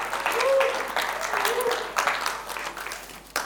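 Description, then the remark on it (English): An audience applauds a guest in steady applause, a dense patter of many hands clapping at moderate volume, with a few whoops or voices rising briefly above it before it tapers off. “Yeah, give her a nice clap.”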